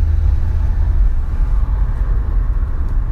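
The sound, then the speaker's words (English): A steady low rumble of a car driving home through traffic, with constant road and engine noise filling the low end and no distinct events standing out. “So I'm in traffic, headed home, getting ready to head over to a basketball practice”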